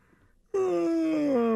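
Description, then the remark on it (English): A loud, drawn-out exaggerated yawn bursts in after a brief hush, a voiced, moaning tone whose pitch slides gradually downward for about a second. “That's a yawn.”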